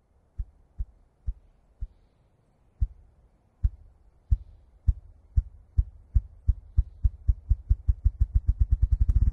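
Deep, muffled wing-drumming thuds from a bird snapping its wings back and catching a pocket of air between its shoulder blades, starting as slow separate beats and speeding up into a rapid drum roll, heard alone with no voices.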